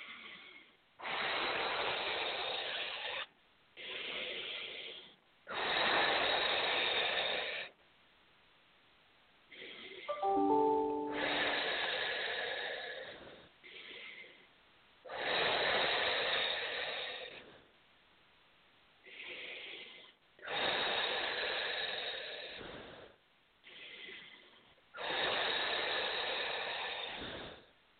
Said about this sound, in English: And breathing deeply, please.